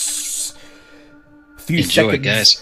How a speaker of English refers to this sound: He stumbles away just as bang, bang, the gas grenades go off and clouds of pale yellow gas begin to fill the area.